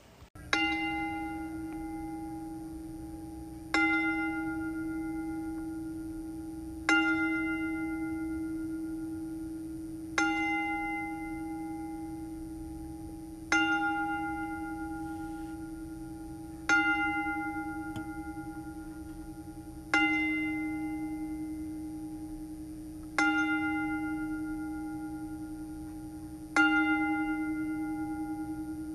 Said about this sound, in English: So in honor of mamaw, we will toll the bell.